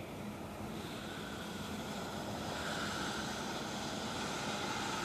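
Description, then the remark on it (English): A steady, continuous rush of splashing water from an outdoor fountain in a park, constant in level, with no voices and no pauses throughout. “I don't know why they haven't shut down the water fountain, but it's still on.”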